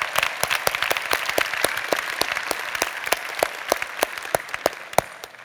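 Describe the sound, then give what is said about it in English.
A crowd applauds steadily for all the mature people, many hands clapping in a dense, crackling wash with sharper individual claps standing out throughout. No voices are heard. “Let's give a crazy round of applause for all the mature people.”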